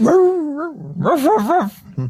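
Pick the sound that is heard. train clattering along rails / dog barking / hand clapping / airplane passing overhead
dog barking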